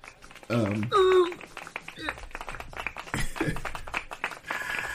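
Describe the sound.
A burst of rapid, scattered clapping, with whooping and cheering voices rising over it at the start and the applause continuing unevenly to the end.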